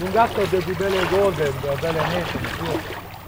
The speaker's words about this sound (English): So here we are once again wading into the water with the rubber overalls. So this time we're a lot closer to the shore. Just in front of us are these round nets hanging on lines with oysters in them.